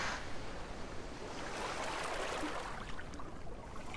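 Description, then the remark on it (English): A steady, broad wash of ocean surf breaking on a shore, with a gentle swell building midway; continuous and fairly soft, with no voices. “We hear the waves calling us and we begin the walk again.”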